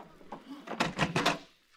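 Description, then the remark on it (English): A front door is opened to answer the doorbell: a short run of quick, rattling clatters from the latch and handle, moderately loud, with no voices. “This time I'm answering the door.”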